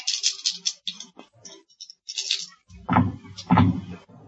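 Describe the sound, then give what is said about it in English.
Dice rattle and clack in a cupped hand for a couple of seconds, then two louder thuds as they tumble onto a hard surface, fairly crisp. “Okay, these dice are much better.”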